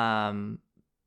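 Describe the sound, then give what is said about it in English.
A single meow from a male cat, fairly loud, lasting about half a second with a slightly falling pitch, then near silence with a faint soft tap. “Oh, there he is right now. Other than Marshall doing weird things, weird cat things”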